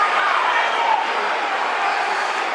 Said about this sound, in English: That's the equaliser, two each. That has been coming all half, and the crowd will react to that.